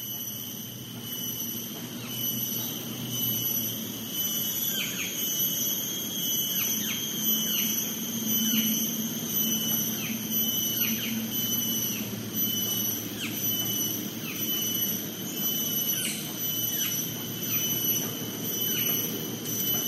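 A male cicada's song cycle: a shrill, steady high-pitched drone with repeated sharp chirps that come faster and faster over about twenty seconds. No one speaks.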